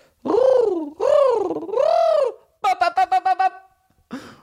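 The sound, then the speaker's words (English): A person imitates a pigeon's cooing: three long, swooping, warbly coos followed by a rapid stuttering burst of short coo notes and one last brief coo. “My exciting pigeon noise. That's what I do when I like something during intimacy.”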